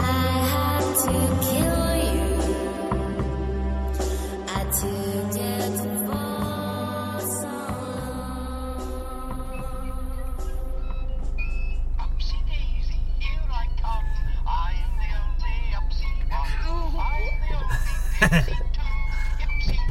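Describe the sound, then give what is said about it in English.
The children's TV character Upsy Daisy sings a bright, sing-song tune over a jingly, toy-like musical backing, playing in a car. The melody runs the whole time without pause, and a steady low hum rises underneath in the second half. “They are that is the dulcet tones of Upsy Daisy you're listening to.”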